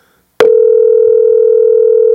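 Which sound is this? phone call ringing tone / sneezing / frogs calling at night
phone call ringing tone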